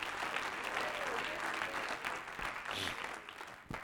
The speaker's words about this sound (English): Clap your hands all over the building to God. Hallelujah.